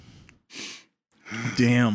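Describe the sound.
Harsh coughing and hacking after hitting a blunt: a short breathy burst, a pause, then a rougher, strained, voiced fit of throat-clearing coughs.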